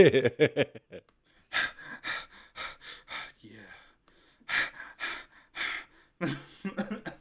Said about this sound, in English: Like, I legitimately broke a sweat and was apparently breathing super hard into the party chat because of how much... It sounded a little obscene, I'm not going to lie.